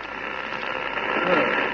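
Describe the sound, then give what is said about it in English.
A steady wash of crackling radio interference on the sound channels builds up, hissing broadly and swelling slightly louder toward the end, with no voices present. “The interference is building up again, Colonel Kent.”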